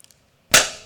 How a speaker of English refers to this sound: And that's the balloon popping.